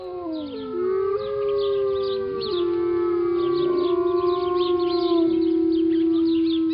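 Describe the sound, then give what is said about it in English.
Several wolves howl together in long, overlapping, wavering tones that rise and hold, with faint high yips flickering above the chorus throughout; no voices. “Long before Manifest Destiny brought frontier settlers westward, before the Spaniards, before even the Apache and the Navajo and the Hopi, wolves roamed the arid Southwest.”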